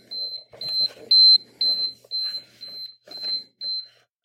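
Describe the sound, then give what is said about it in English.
Repeated electronic beeps sound in short, evenly spaced pulses at a steady high pitch, fairly loud, with people talking underneath and between them. “We need louder volume on the beeping.”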